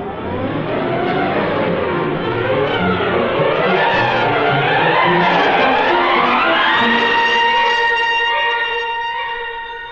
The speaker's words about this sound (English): The Hornet came by, all right. Police are chasing after him in a car. Went right by without stopping.